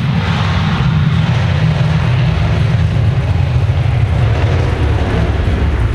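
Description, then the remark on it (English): A loud, continuous roar of four F-35 fighter jets taking off, with the biggest engine ever put in a fighter, rated to about 42,000 pounds of thrust. Deep and rumbling with broad hiss on top, holding steady for the whole stretch with no voices. “That's the biggest engine ever put in a fighter just there.”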